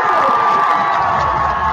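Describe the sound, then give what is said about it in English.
A loud, sustained roar of a standing football crowd cheering a Rock Hill Bearcats touchdown, with high shouts and whoops blending into a steady wall of noise that holds at full volume throughout. “Oh, boy, everybody's excited. The crowd's standing.”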